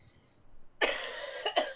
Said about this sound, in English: This is my coughing fits I've been having.